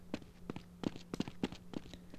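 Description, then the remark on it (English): Footsteps from the video game Ultimate Doom, played with the Footsteps mod, thud in a quick, steady rhythm, about eight crisp steps in a couple of seconds, over a faint constant low hum with no one talking. “This particular playthrough is going to use Ultimate Doom with the Footsteps mod.”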